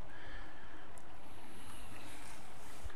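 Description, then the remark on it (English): A steady, gentle rush of flowing brook water beside a leaf-littered trail at about 1 p.m., continuous and soft, with no voices, just an even watery hiss that stays constant throughout. “And all he hears is the brook.”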